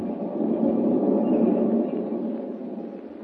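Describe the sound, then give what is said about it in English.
A steady, low rumble of a moving westbound passenger train rolls on continuously, fairly loud, easing slightly toward the end with no voices present. “With Lois Lane, an unwilling passenger on a westbound train,”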